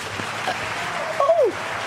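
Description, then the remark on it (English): Steady, dense applause from a crowd fills the moment at an even level, with a brief rising-and-falling whistle-like tone cutting through near the end. No one speaks. “Where did the clapping come from? I've never had clapping before.”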